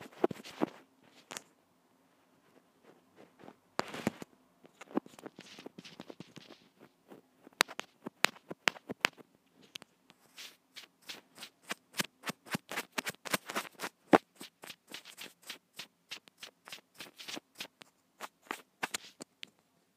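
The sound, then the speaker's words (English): Crisp bristle strokes brush repeatedly against a surface, sparse at first and then settling into a quick, steady scratching rhythm. No one speaks. “Brush.”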